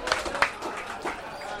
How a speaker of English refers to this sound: Give that gentleman a round of applause.